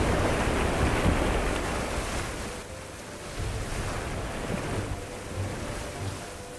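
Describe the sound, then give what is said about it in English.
A rough, stormy sea, the Sea of Galilee in a violent evening storm, churns continuously, waves surging and crashing and rocking boats while strong wind roars across the water, loud with no pauses. “That evening, a violent storm erupted. The sea actually became too rough to navigate, violently rocking the boats.”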